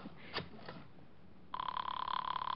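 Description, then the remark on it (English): After a second or so of faint rustling and clicks, a telephone starts ringing, a steady buzzing ring that holds at moderate loudness until the end, with no voices. “Give me the phone.”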